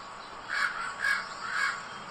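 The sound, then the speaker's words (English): Three harsh, evenly spaced caws ring out one after another, a crow calling over a faint steady background hiss. “Birds now.”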